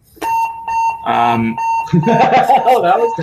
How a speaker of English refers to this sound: Oh, alarm bells going off here.